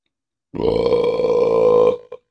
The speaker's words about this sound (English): Coffee burps. Such a wonderful thing.